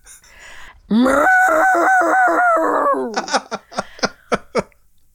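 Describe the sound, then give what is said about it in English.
A woman's voice imitates a man who was mooing and yelling very loudly like a cow: one long, loud, strained moo that rises and wavers for about two seconds, followed by a quick series of short, sharp vocal bursts. “And he was mooing and yelling so loud.”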